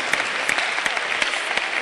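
An audience claps steadily for a woman, a dense, bright wash of many hands with a few sharper individual claps poking through, sustained at an even loudness with no voices.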